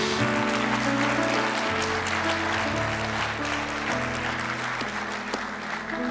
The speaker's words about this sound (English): If you love Jesus, let me hear your hands this morning.